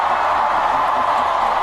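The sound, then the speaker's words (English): A dense, steady roar of a large crowd shouting together, loud and continuous without pauses, blended into a wash of many voices rather than individual calls. “Lots of shouts from the crowd here.”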